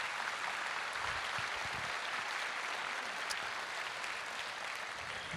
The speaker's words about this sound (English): Raise your hand if you're in Hope is Alive Ministries, all these folks over here. Give them a big round of applause for coming here today.